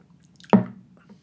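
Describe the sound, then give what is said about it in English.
A single short, wet sip of a drink: one quick liquid gulp that starts abruptly, then fades into a low, muffled tail, with no talking around it. “Let me take a sip.”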